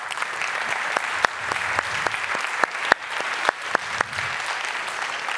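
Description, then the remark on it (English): An audience claps together for the Lord for about five seconds, a dense patter of many hands with a few sharper, louder claps standing out. The clapping stays fairly steady throughout, with no voices heard over it. “Just give the Lord a little clap.”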